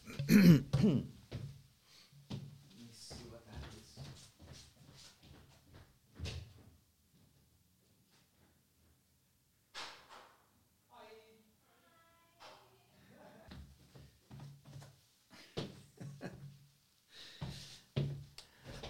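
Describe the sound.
A door is unlatched and opened for a visiting couple, with a series of knocks, clunks and shuffling handling sounds, then a brief lull and faint, muffled voices before more bumps follow.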